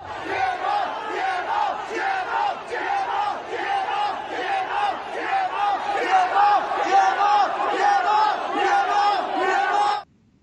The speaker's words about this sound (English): And here they are collectively screaming from their apartments in protest.